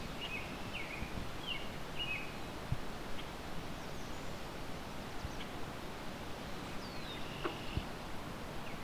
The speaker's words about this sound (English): There's our swamp sparrow.